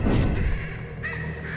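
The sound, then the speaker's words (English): A crow caws harshly and loudly, a raspy, drawn-out call followed by a second shorter rasp, with a low rumbling background underneath and no talking. “And then about the time where you start to really feel it, that beak shifts a little bit more and the color darkens until you are walking alongside this crow.”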